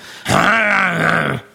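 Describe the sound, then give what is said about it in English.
A single loud, sustained growling snarl made by a human voice imitating two dogs fighting over a soup bone, lasting just over a second with a rough, strained tone and no other sounds around it. “Two dogs fighting over a soup bone.”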